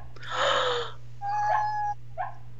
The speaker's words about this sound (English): Y'all, do you hear that whimpering? Mm-hmm. My dog is dreaming.